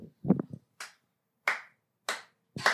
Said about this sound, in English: Clap.